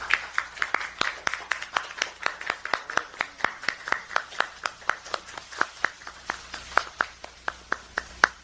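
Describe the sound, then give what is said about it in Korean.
Steady applause from a crowd, many hands clapping at once with sharp, rapid claps sustained throughout at moderate volume, no voices heard over it; the crowd welcomes Kong Young-hoon, former president of Hyundai Motor Company, at a Democratic Party of Korea event. “공영훈 전 현대자동차 사장님을 박수로 환영해 주십시오.”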